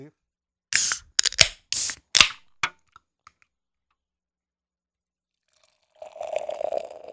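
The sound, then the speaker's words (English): Belching Beaver's Viva la Beaver, a Mexican chocolate peanut butter milk stout, is poured into a glass: a few loud, splashy gushes in quick succession, a pause, then a softer, steady trickle and fizz near the end. “We got this poured out, and this is smelling very, very reminiscent of just a regular ass version of the peanut butter”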